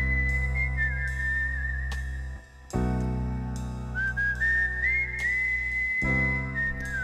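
A clear, sustained whistled melody glides between notes over a steady backing of instruments, with a brief drop in the accompaniment partway through before the tune continues.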